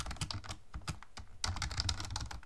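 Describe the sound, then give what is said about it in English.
Rapid, uneven clatter of keys being struck on a computer keyboard, fairly loud, with a denser burst of typing in the second half and no voices. “Your keyboard is very loud in my earphones.”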